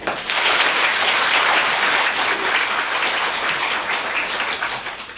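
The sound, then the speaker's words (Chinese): Sustained, dense applause from a large audience thanking Khenpo Sodargye Rinpoche after his two-hour teaching at Hunan Normal University's Shuda College, a steady wash of clapping that holds loud for about five seconds and begins tapering at the end. No voices stand out. “两个小时很快就过去了，我相信在座的每一位都有不同程度的收获，让我们再次以热烈的掌声向堪布仁波切致以诚挚的感恩。”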